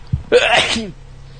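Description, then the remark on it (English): A single sharp sneeze bursts out loudly, starting with a quick intake and ending in a brief trailing vocal tail, then quiet. “Bless you.”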